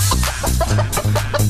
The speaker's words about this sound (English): Whoa, who let that chicken in here?